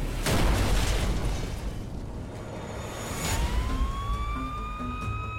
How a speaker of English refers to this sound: A neighbor hears the explosion, calls the Chugiak Volunteer Fire Department. They don't know what's happened. Initially, they thought it was a natural gas explosion. I just heard a loud explosion and it rocked her house.